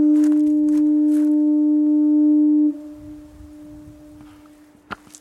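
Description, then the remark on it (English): A lighthouse foghorn sounding on a damp, foggy day gives one long, steady, low-pitched blast of nearly three seconds, loud and unwavering, then cuts off to quiet ambient murmur with a brief click near the end. “Just that foghorn sound and nothing more.”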